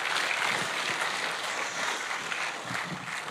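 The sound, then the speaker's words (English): A church audience applauds as the second speaker is invited up, a dense, steady wash of many hands clapping that holds at an even level for a few seconds, with no voices standing out. “Let's give him a huge round of applause as well.”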